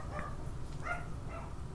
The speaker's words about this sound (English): My dog's a little asshole barking during a podcast. What a jerk. We're podcasting here. Doesn't he know? Quiet on the set, you fucking little shit. This is the first time he's done this either.